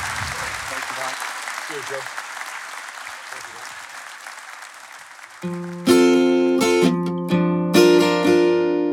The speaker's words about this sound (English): Let's give a big round of applause to Mike Bubbins, everybody.